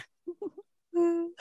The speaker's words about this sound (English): The yawning's back.